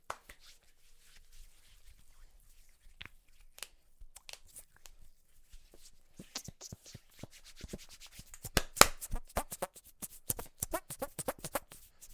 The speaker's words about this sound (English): Dude, hand farts. Oh, that was an accidental one.